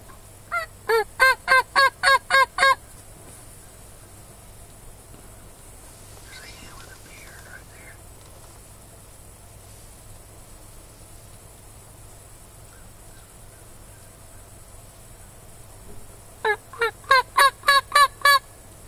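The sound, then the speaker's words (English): A turkey gives two loud runs of rapid, evenly spaced yelps, one at the start and one near the end, with a long quiet outdoor stretch between them; the calling is to get a hen and four jakes to come down. “And he's calling and trying to get them to come down.”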